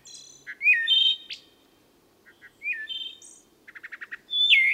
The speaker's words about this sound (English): And like many of us who get out into the pine woods at dawn or dusk, the naturalist was especially taken with the songbird called the wood thrush.